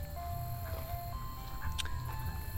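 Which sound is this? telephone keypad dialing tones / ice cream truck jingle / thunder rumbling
ice cream truck jingle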